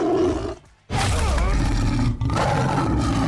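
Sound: tiger roar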